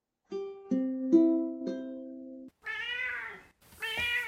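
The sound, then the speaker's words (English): A few sustained musical notes play, then a cat named Puss meows twice, clear, each meow drawn out with a wavering pitch. “Since Puss didn't interrupt me today. Meow.”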